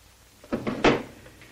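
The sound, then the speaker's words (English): A desk drawer is yanked open and searched for a letter, with a few quick wooden knocks and rattles as its contents shift, then it quiets down. No one speaks. “Maybe one of the other drawers.”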